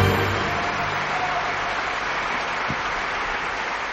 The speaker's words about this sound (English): From Silicon Valley, a big round of applause for Cleverbot!